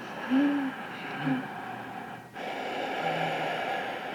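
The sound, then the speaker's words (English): A person does ujjayi breathing, a restricted breath generated more from the chest, breathing slowly through a constricted throat and producing a raspy, hissing breath with low snore-like hums near the start, then a short pause and a long, steady breathy exhale. “Just lay down, and the ujjayi is it's a restricted breath, so it sounds almost like you're snoring.”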